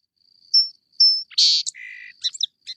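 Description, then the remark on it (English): A song sparrow sings clearly: two bright introductory notes, then a buzzy burst, a low trill, and a quick jumble of high chirps, all with no voices. “And they can make a bunch of different versions of this song.”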